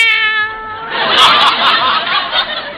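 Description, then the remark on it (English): A cat, kept in a separate cage away from white mice, gives one drawn-out meow, followed by a couple of seconds of rough, breathy, hissing-like noise at a steady, fairly loud level, with no talking. “Cats do that to mice as a rule. Here they are. Meow.”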